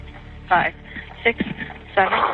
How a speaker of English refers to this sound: And you hear this heavy breathing on the phone.